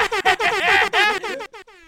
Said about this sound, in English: Did you just air horn? I just air horned. Love it so much.